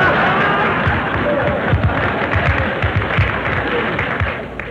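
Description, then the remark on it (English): Steady, dense applause from a studio audience for a performer's entrance on stage, a continuous wash of many hands clapping that holds loud for several seconds and fades slightly at the end, with faint crowd murmur mixed in. “Phil, how in the world can you walk out on the stage like that and ask an audience to applaud you?”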